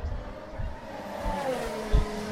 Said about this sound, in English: And then I came to the Grand Prix and I saw cars going real fast. Some cars had flames on them and some had white on them.